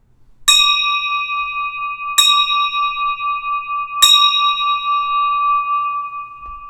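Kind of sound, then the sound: signal or alarm, bell ringing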